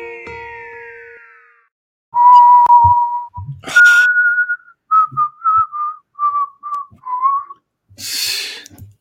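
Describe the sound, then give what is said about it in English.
Someone whistles a Star Wars tune clearly, starting with long held notes and moving into a run of short, rhythmic notes. No one speaks, and a brief breathy rush ends it. “I was whistling while it was playing and do.”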